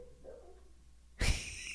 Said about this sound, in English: You hear the dog barking in the background?